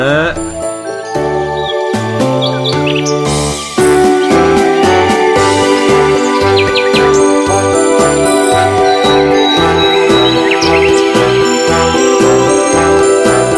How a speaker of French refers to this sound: chansons de piano de merde avec des samples de oiseaux